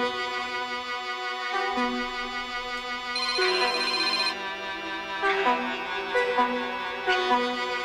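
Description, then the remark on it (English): A phone ringtone plays a bright, steady electronic melody of repeating tonal notes for several seconds as the call goes unanswered, fairly loud and uninterrupted, with no voices. “Nigga ain't answering.”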